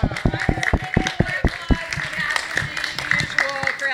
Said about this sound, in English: Can we give him a big round of applause?